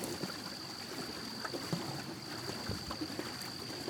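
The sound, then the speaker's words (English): Boats moving on river water, where smaller boats gather around large barges filled with fruit to buy produce, with a steady wash of lapping and sloshing, scattered soft knocks and splashes, and a faint constant whine running throughout. No one speaks. “The smaller boats are gathering around them, buying the produce in large quantities for their own sale.”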